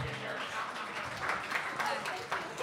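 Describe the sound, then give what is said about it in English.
An audience claps for the performer's agent for a few seconds, a dense, even wash of overlapping hand claps at moderate volume with a few sharper slaps standing out, sustained throughout with no clear pauses. “Clap it up for my agent.”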